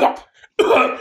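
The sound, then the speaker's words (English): A voice imitates coughing: two harsh, throaty bursts separated by a short near-silent gap, the second burst longer and rougher, with no words spoken. “And then he starts coughing, he starts going...”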